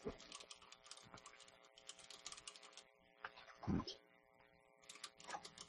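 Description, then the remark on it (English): Rapid, irregular clicking of keys on a computer keyboard as someone types a password, fairly quiet, with a brief pause and a heavier thump partway through before the typing resumes. No one speaks. “You forgot to say your password out loud while you were typing it.”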